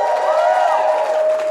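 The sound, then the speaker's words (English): An audience at a live show responds with a loud, sustained burst of cheering and applause, with high whooping voices carrying steadily over the crowd noise for the full moment. “Just by round of applause, who has seen or heard the podcast before?”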